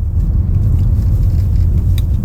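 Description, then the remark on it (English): Motorcycle engines rumble past outside, a loud, steady low-pitched drone that fills the whole moment with no voices over it. “uh-oh, we got motorcycles up in this bitch.”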